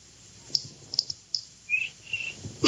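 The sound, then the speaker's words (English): A cricket chirping: a few short, sharp high ticks, then two brief, bright chirps in quick succession. The sounds are fairly faint and there is no talking. “He always gives two chirps.”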